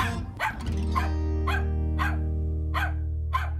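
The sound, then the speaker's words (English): A dog named Lily barks about seven times in a steady, evenly spaced rhythm, each bark sharp, over a constant low hum. No one speaks. “That's Lily there.”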